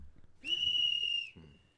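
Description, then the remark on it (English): A single sharp, high-pitched whistle blast lasting nearly a second, loud, with faint low background murmur before and after. “What was the whistle okay.”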